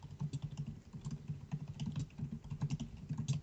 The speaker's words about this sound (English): my typing skills.